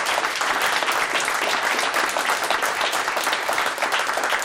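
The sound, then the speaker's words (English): Sustained applause from a large audience for the panelists of a panel discussion on climate change, a dense steady wash of many hands clapping at once, loud and even throughout with no voices standing out. “Well, let's give a big round of applause to that and to all of our panelists.”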